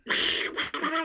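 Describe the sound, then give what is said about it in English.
A person imitates Donald Duck's voice: a loud, raspy, buzzing squawk broken into about three quick sputtering bursts, lasting around a second, with no other sound. “I can also do a pretty decent Donald Duck.”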